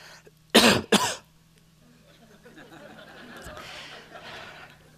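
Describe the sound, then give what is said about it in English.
Two sharp, loud coughs in quick succession near the start, followed by a few seconds of quiet background noise and faint murmuring. “That was a true cough.”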